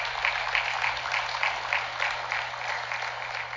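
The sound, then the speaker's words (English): A church audience gives God a round of applause during a sermon, a dense, steady wash of many hands clapping that holds for several seconds, with a faint regular pulse running through it and a low hum underneath. No one speaks. “Can we give God one last round of applause and I'll finish preaching.”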